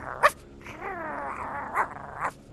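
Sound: dog barking and growling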